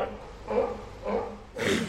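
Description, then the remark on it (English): Three short, breathy alarm calls from alarmed waterfowl related to ducks and geese, like sneezes, spaced about half a second apart. The last one is harsher and hissier, over a low background rumble. “And that's a sneeze. They're alarmed.”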